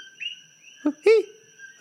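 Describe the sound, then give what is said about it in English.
Coqui frogs calling in Hawaii, with a few loud, short whistled chirps rising in pitch, set against a steady high-pitched chorus of calls droning in the background. No one speaks. “Getting the backup here from the Kokui frogs.”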